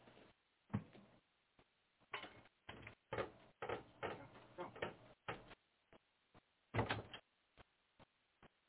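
A door opens and closes to let a cat back into the room, with several clunks, creaks and handle rattles spread over a few seconds, ending in a few light knocks.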